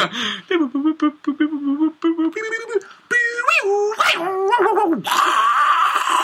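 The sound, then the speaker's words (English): A voice imitates a 56k dial-up modem connecting: a run of short, clipped tonal beeps, then rising and falling warbling squeals, ending in a sustained hissy screech for the last second or so. “That's the modem dial-up noise.”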